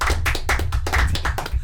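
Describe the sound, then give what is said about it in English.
A short burst of applause: several people clapping together in a dense, steady patter of sharp claps, fairly loud throughout, with no one speaking over it. “Let's give Chris a round of applause, real quick.”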